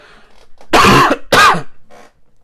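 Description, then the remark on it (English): A voice imitates coughing and throat clearing, mimicking how some people sound when praying: two loud, harsh, rasping bursts in quick succession, with brief quiet before and after. “Because those people just sound like they're coughing or they're trying to spit out like a bone that they accidentally swallowed.”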